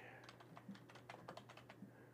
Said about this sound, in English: People can hear me typing one-handed because I'm jacking off with the other hand.